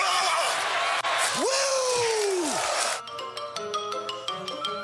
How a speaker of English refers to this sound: A little long, but that was, could you guys believe they have some hitting audio from way back in the WWF days? Disturbing.